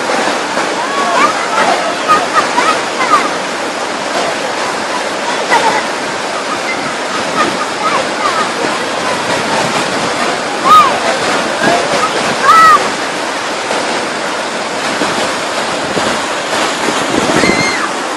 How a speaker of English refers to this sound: See there how the water is now rushing into a very narrow wadi.